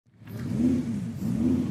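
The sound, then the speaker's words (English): A car engine idles with a low rumble and revs up twice in quick succession, each rev swelling and easing off, amid outdoor ambience at a car meet, the first since the coronavirus lockdown, with no voices. “Hey guys, we're at Cars and Coffee, the first one since all the coronavirus lockdown, and it's really something special to show you all.”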